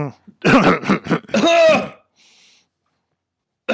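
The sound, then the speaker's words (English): A person forces out a few dry, heavy fake coughs, pretending to have COVID, and a throaty rasp in quick succession, loud, followed by a brief quiet hiss and silence. “It's supposed to be like real dry, heavy coughs.”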